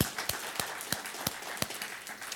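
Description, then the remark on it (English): Soft audience applause, a dense wash of clapping with a few sharper claps standing out at a steady beat, about three per second. Nobody talks over it. “Yeah, we could applaud for that, I think, for sure.”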